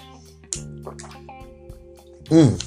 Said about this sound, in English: Excuse me, I'm parched. Hitting my water. Got hit it again.